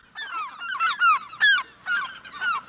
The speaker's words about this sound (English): Look at that gull drifting across the sky. It seems to move through the air without effort.